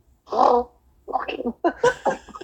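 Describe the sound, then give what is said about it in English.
A voice blurts out a series of wet, sputtering raspberry-like fart imitations as a joke, one long burst followed by several choppier ones, fairly loud with no other talk. “I don't know how I'm letting you give me fart jokes now.”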